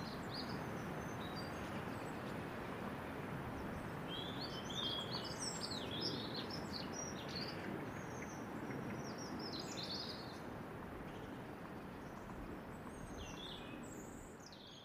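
Many migrating birds call during the autumn migration on the Cromarty Firth in Scotland, a busy flurry of high, short chirps and twitters, scattered unevenly over a steady, loud rushing background noise that fills the whole recording.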